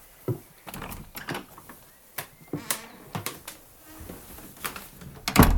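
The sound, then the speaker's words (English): A run of scattered clicks and knocks, like a handle and latch being worked, ends in a louder low thud as a door shuts when someone leaves. No one speaks. “lock the door.”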